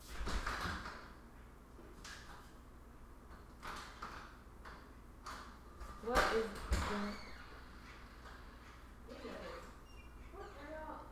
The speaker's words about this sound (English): Is that like a duck? It sounds like a duck. I don't know. It's sometimes, I don't know. It's like the loudest bird ever. I feel like it's like at the door.